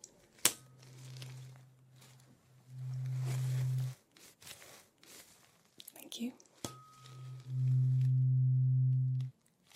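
A steady low humming tone from a hearing test sounds twice, each time starting softer and then swelling louder before cutting off, with faint rustling and quiet breathy noises in the gaps between.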